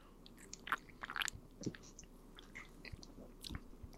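Several short, wet slurping sips of a berry energy drink, spaced irregularly with soft mouth noises between them and no talking.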